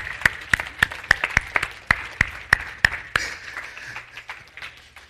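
An audience gives a man a big round of applause, with loud, sharp claps in a steady, quick rhythm standing out at first, then fading into a softer, scattered patter of clapping. No one speaks.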